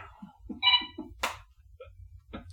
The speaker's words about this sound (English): Dogs, table moving.